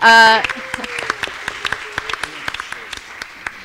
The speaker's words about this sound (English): so round of applause there.